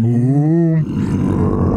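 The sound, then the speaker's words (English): A voice imitates a cow's moo: one loud, low, drawn-out tone that rises slightly, then breaks into a rough, gravelly growl for the rest of the sound. “Who can say today that Michael Winslow spanked him in the rear end to get him to do a cow sound?”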